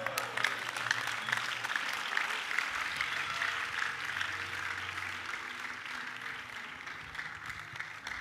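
A crowd claps steadily for several seconds, a dense wash of hand claps that holds fairly even in loudness throughout, with no voices standing out above it.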